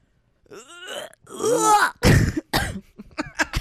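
One harsh, real cough bursts out midway, surrounded by drawn-out groaning and throat-clearing vocal noises that rise and fall in pitch, with a few shorter rough sounds trailing after.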